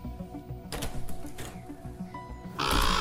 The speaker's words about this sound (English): Shoo! Go away! Pesty bird!